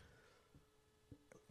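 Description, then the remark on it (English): A few small catching breaths in near silence, then one sudden loud, explosive sneeze bursting out at the very end. “This is going to be the sneeziest episode ever.”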